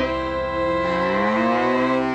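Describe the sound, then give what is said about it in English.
A single long, loud cow moo, a rich droning bellow that holds steady for about two seconds with a slight rise in pitch near the end. “Cows, too.”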